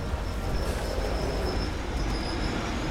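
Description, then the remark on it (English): Steady rumble of a passenger train rolling along the rails towards Munich, heard from inside, with a deep continuous drone and a thin high whine running through it; no voices. “At the right side window, riding towards Munich, you can just about make out the Alps further south.”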